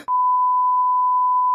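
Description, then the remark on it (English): A single long, steady censor beep, a loud pure tone held for about a second and a half, cutting in abruptly with no other sound around it. “I'm just going to leave a long beep right there.”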